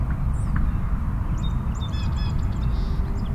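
A few short, chattering call notes of a female Eastern Meadowlark ring out in a quick burst over a steady, heavy rumble of wind or outdoor noise.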